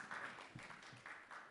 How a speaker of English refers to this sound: She got an applause.